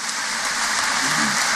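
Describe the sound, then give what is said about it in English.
A large crowd applauds George Mitchell after his address at a conference at Queen's University, in a steady, dense wash of clapping that stays loud and even throughout, with no voices heard over it. “Well, resounding support for that sentiment, and huge round of applause for George Mitchell, who was addressing those who managed to attend this conference that's taking place in Queen's University.”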